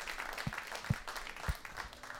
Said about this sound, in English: Can we give Kyle one more round of applause?